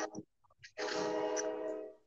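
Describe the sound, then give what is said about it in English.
A loud, sustained train horn blares for over a second, a rich chord-like tone that swells in suddenly and fades slightly at the end, preceded by a few faint clunks. “There's a train coming. I hear it. All right. So the train's on our audio.”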